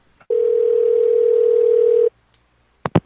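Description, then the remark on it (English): A steady, loud single-pitch telephone dial tone hums for about two seconds after a faint click as a caller hangs up the phone, then stops; two quick clicks or knocks follow near the end. “You hung up the phone.”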